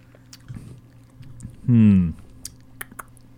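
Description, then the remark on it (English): Mouth sounds of people drinking a Dr. Pepper soda variant during a live radio broadcast: soft sips, swallows and small wet clicks, interrupted midway by a brief loud voiced hum, with quiet background murmur. “All right, live radio drinking liquids.”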